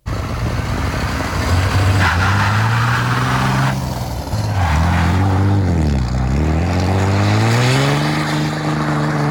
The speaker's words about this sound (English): That's a one-wheel burnout. It's an awesome burnout. Look at all that white smoke like cotton candy in the middle of a county road. There's no houses or buildings anywhere in sight.